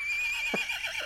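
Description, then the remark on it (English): A brief, high-pitched horse whinny with a wavering, trilling tone lasts about a second, heard on its own with no talking. “Because there was a tiny horse.”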